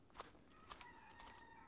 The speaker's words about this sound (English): But the turkeys, I heard the turkeys gobble too. Everything's waking up out here.